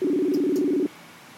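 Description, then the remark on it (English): A steady electronic cell phone tone hums for just under a second, with a couple of faint clicks from pressing the keypad to call someone, then cuts off abruptly into quiet background hiss. “So we will reach out to him through his cell phone.”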